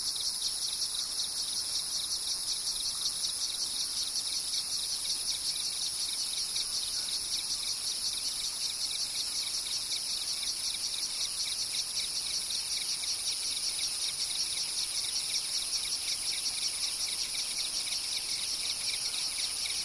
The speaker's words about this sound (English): In the lower valleys, we always heard crickets and cicadas. They hummed and buzzed and made complex phasing rhythm patterns.